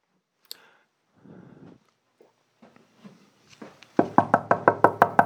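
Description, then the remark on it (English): Someone knocks firmly on a door, a rapid run of about eight sharp, evenly spaced raps, loud, after a few quieter shuffling and clicking noises. “Oh, yep, that's my master on the door.”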